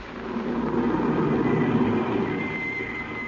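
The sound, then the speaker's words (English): A car drives up: a steady low engine rumble holds at a fairly constant level for a few seconds with a faint high whine emerging toward the end. “And suddenly, a car drove up.”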